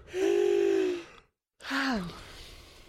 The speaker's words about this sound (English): Okay, our sound levels are good. Hey, let's get those yawns out.